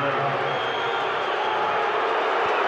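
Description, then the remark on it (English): A large arena crowd at a basketball game cheers in a steady, loud roar of mingled voices after a missed free throw with 1.3 seconds left in the quarter, with no break and no single voice standing out, sustained for a few seconds. “They still cheer, though.”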